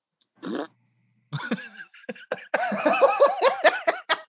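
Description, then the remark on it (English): A voice imitates a fart with the mouth: a short buzzy blast, a pause, then a longer stretch of sputtering, wavering raspberry noises mixed with what sounds like laughter. “Like a fart sound with your mouth or with your butt? With the mouth.”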